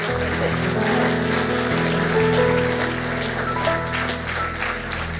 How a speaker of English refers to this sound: Let's give them a clap, shall we? It's great.